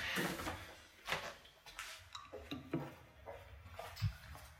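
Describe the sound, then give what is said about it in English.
A handful of sharp clunks and rustling clatters as a child throws a piece of trash into a bin at home, followed by a cupboard door knocking shut, over a faint background. “I'm throwing this piece of trash away.”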